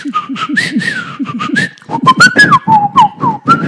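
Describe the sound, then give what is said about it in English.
A person whistles a quick, chirping birdlike call, bright tonal notes sliding up and down in a lively, stuttering rhythm, with breathy vocal sounds underneath, imitating a bird for about four seconds. “He can speak the language of birds.”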